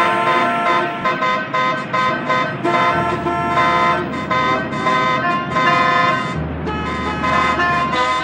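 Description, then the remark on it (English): Many car horns honk at once in a parking lot in a loud, continuous chorus, overlapping long blasts and short toots of different pitches, with a low idling rumble underneath and no talking. “Now, let's make some noise and light up the community. Honk and flash those lights.”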